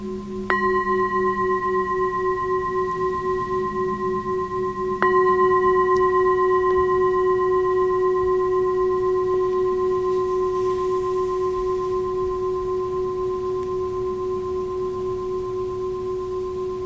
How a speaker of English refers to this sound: If you want, notice the changes happening with the bell ringing, changes in the body or changes in the mind.